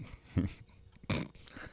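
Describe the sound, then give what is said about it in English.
A dog makes two short, throaty noises, a low grunting sound followed about half a second later by a sharper, breathier burst, with no talking. “Oh, dear. Dog, no.”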